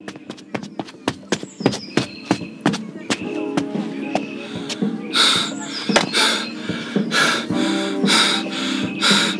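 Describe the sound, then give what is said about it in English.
Quick, evenly spaced footsteps thud along at a running pace, then loud, heavy panting breaths join in, rhythmic and breathless, with no talking. “I always think that running footsteps sounds like”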